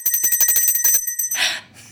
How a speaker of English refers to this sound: I'm going to ring the bell for this because it's that amazing.